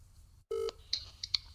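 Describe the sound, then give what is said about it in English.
A short, steady electronic ringing tone of an outgoing telephone call sounds once, clear, followed by a few faint high-pitched beeps over a quiet low hum, with no one speaking. “Okay, it's ringing.”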